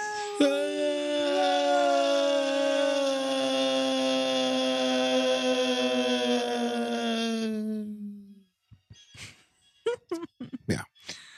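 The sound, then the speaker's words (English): A female dog lets out one long, loud, sustained howl that slowly sinks in pitch over about eight seconds, followed by a few short, sharp whimpering yelps. “I think that woke up my dog.”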